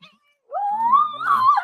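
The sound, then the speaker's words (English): A single drawn-out kitten meow rises slowly in pitch and holds for about a second, heard clear after a brief silence, while a child tries to get the cat. “There's a child trying to get a cat over here right now.”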